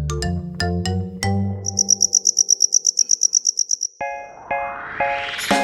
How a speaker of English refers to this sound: The English word cricket comes from an old French word, criquet. That's what people thought it sounded like when a cricket was singing. Criquet, criquet, criquet. That's how crickets got their name.